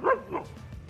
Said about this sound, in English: Now, I know that may not mean a lot to you, but my dog just went, yes, finally somebody said it.